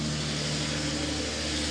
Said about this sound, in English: Hang on. We'll let this truck pass.